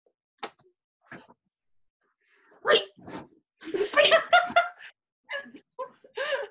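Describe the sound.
A person imitates a prairie dog communication call: a run of sharp, high-pitched yips and chirps in uneven bursts, loud, with a couple of brief breathy sounds between them.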